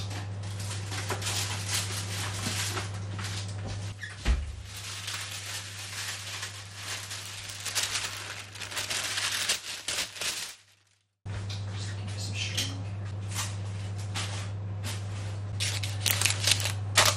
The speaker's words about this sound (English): Okay, so I've wrapped string around the greaseproof paper, so that's ready to go in the oven now.